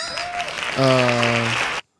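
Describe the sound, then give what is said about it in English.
Steady applause, a dense wash of many hand claps, with a loud sustained voiced shout rising over it partway through before everything cuts off abruptly. “Hand claps.”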